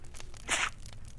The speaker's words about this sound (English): What was that? What? That sound. It was a sneeze.